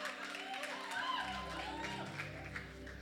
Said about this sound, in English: Okay, you are clapping for me for giving us such a short passage. You can do that better. You can do it better.